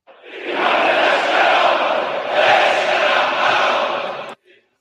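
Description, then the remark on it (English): A large crowd at Friday prayers in Tehran chants anti-American slogans, shouting together in a loud, dense roar of voices that swells twice over about four seconds before cutting off abruptly. “Well, there were anti-American chants in the crowd.”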